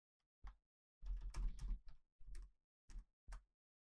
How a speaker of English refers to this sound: Oh my god, this fucking keyboard. Like, you have to type one key at a time like it's a